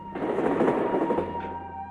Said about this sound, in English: and then the freight train that I see from the window